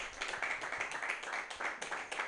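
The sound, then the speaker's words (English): A festival audience claps for Mutiny Radio for putting the festival together: a dense, steady wash of many overlapping hand claps with no single rhythm, holding at an even level throughout, with no voices. “Hey, give it up for Mutiny Radio, putting the festival together, doing the whole thing.”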